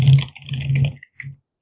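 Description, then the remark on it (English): Muffled keyboard typing in quick bursts of keystrokes, heard over a Skype call, with a brief pause and then a short final flurry. No one speaks. “You know, stop typing if you're ready to go.”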